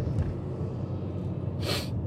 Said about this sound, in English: Sorry if I keep sniffling, but I've been wearing headphones so long in my life that there's something that goes on with my ears and they close up by themselves, and the only way to reopen them is to do that.